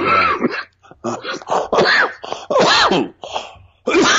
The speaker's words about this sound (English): So I don't know if that's the cough of my sort of symptoms, or if that's just so hard for me to talk about that it chokes me up. It could be both.